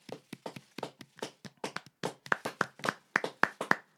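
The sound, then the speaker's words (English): A steady run of hand claps, around fifteen sharp slaps in a fairly even rhythm, becoming crisper and slightly ringing toward the end, with no voices alongside. “The participants are not getting claps anymore, but hold tight the participants.”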